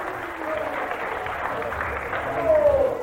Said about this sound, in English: Give her a clap.